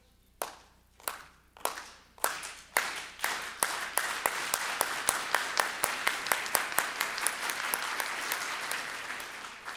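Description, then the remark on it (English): An audience claps together, starting with a few slow, separate loud claps that quicken into a steady, rhythmic beat over a swelling wash of applause. “Let's do the clap.”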